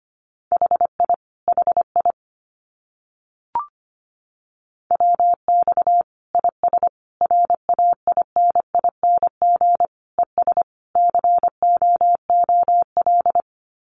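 Common QSO (radio contact) phrases sent in Morse code at 25 words per minute: a steady mid-pitched tone keyed into rapid dots and dashes, grouped into bursts with short pauses between words, with no voices.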